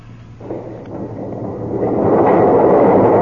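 Massive heavy doors slowly scrape open with a deep, grinding rumble that builds steadily in loudness over a few seconds, with a low hum underneath and no voices.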